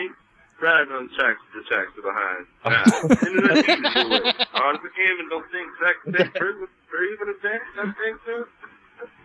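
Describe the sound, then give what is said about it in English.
A phone recording of voices played backwards, garbled and unintelligible, with warbling syllables in choppy bursts and a louder, busier stretch in the middle, all fairly loud. “How did you record backwards in your phone?”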